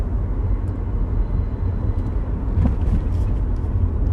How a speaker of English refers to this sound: There's a truck on my right and a minivan in front of me, just to give you a mental image of where I'm at right now, folks.